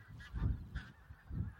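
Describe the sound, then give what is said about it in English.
A flock of geese calls as it flies overhead on a winter's day, a jumble of loud, nasal honks rising in three overlapping bursts over a low, steady rumble, with no voices. “What a noise. And what a perfect place to be on a winter's day. With all this life. As they fly over me.”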